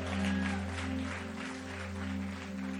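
A church conference audience claps steadily for a few seconds for the worship team, a dense wash of many hands at an even loudness, with a low sustained drone underneath and no talking.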